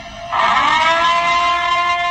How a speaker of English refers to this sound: They're playing air raid sirens in Quebec at 8 p.m.? That is the 8 p.m. curfew alarm. That is ridiculous.